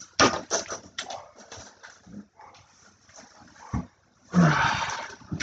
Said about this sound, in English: Ah, now they always bark at shit. If you can hear right now, you can hear my lovely animals.